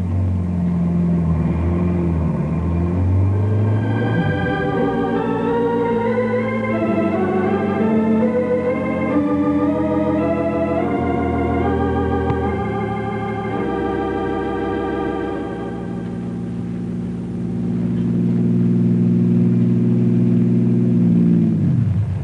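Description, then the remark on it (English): A car engine revs up and accelerates as the car is driven half a mile down a road, turned around and driven back toward a barricade at a set speed, its pitch climbing steadily before dropping to a lower, steady drone. Loud, with no voices. “drives the car a half mile down the road, turns around, and starts back toward the barricade.”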